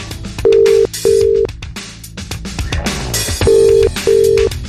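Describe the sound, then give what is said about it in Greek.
A telephone ringing tone sounds twice, each time as a pair of short, steady electronic buzzes, loud and clear over busy background music, with the call left unanswered. “Πήγες ερωτική πλανάστρια στο Βόλο και δεν σηκώνεις τηλέφωνα.”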